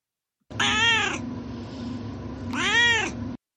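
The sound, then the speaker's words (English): The speaker's cat Duarte meows twice, fairly loud, each call a drawn-out, wavering cry with a brief pause between them and no one talking. “And now it's time for Duarte's Corner, where my cat Duarte, again, shares his opinions about the book.”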